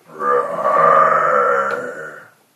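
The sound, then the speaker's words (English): A person voices a deep, growling monster roar, one sustained guttural bellow lasting about two seconds that swells quickly, holds steady and then fades out. “It roars.”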